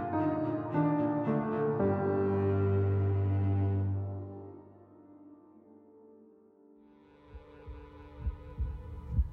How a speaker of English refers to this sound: A heartbeat drums at her temple, insistent, demanding, determined.